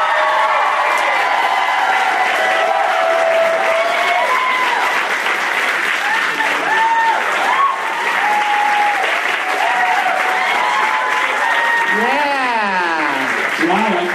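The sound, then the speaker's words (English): A crowd claps loudly and steadily for the whole stretch, with scattered whoops and rising, falling cheers cutting through the dense wash of applause, welcoming guests Kumail Nanjiani, Jonah Ray, and Zach Galifianakis. “Such a huge cheer.”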